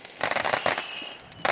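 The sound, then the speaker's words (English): Fireworks going off in a quick string of sharp, crackling bursts, several pops close together, then a brief lull before another loud burst. No talking is heard. “Those fireworks are still going off.”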